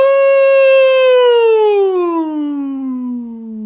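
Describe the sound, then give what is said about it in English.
A single voice imitates an air raid siren with a sustained, loud, harmonically rich wail that holds high and then slowly slides downward in pitch, fading off over about three and a half seconds. “No, it's like an air raid siren.”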